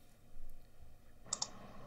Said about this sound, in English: stop clicking that fucking mouse, bro.